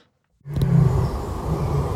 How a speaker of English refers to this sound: Lion. Yeah, it's definitely a lion. It is a lion.